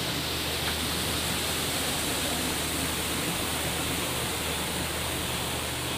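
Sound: rushing waterfall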